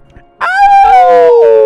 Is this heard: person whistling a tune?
no